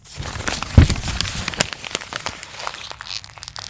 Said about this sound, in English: In my anger, I'm just going to crumple up this piece of paper.